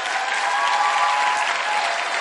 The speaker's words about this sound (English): You're still not clapping properly. Clap properly.